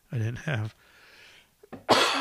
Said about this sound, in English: Now I'm going to cough for a half hour.